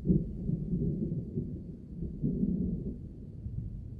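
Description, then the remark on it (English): Deep, low rumbling thunder in a truck simulator video game rolls continuously, swelling slightly midway before settling into a steady growl, with no voices present. “Holy shit, that thunder sounds so goddamn good.”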